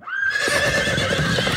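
A horse whinnies loudly, one sustained, quavering neigh lasting just over a second, with no voices or other sounds around it.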